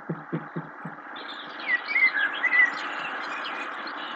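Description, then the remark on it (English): A few quick bird chirps flutter out over the steady, rushing hiss of wind blowing, preceded by several soft low thumps at the start. “Oh, the birds chirp in the wind, I guess.”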